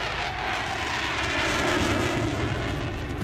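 aircraft engines starting up

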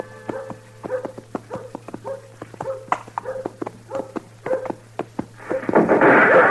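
horse hooves approaching

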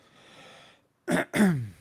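cough

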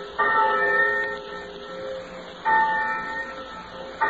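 college bell ringing

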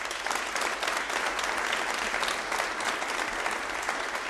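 audience applause

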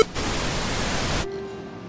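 running water

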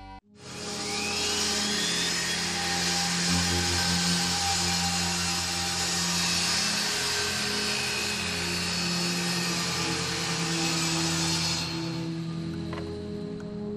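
sawing wood

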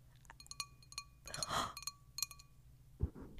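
glass clinking

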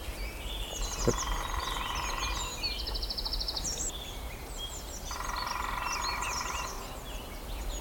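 lesser spotted woodpecker call

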